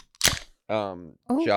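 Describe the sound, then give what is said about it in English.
A brief, sharp metallic crunch as an aluminum can is crumpled, a bright crackling burst lasting a fraction of a second, followed by voices exclaiming. “You crumpled the can just to get that sound effect.”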